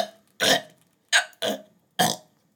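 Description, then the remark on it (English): Four short, throaty burps in quick succession, the first longer and rougher, the rest clipped and separated by brief silences, with no talking. “Please burp closer to the microphone.”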